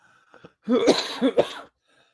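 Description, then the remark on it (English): A male radio host coughs hoarsely on air, a short burst of two or three rough, phlegmy coughs, with a faint throat sound just before and quiet background after. “Sorry for my coughing on air.”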